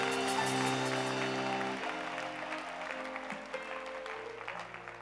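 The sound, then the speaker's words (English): A crowd claps hands in a dense, steady burst of applause lasting the whole clip, easing slightly after the first couple of seconds, while sustained keyboard chords hum underneath; the worshippers clap their hands for the Lord at a preacher's call. “If you are in the name of the Lord Jesus, in the name of Jesus, lift up your right hand and say, Satan, go away from me in Jesus' name, and clap your hands for the Lord.”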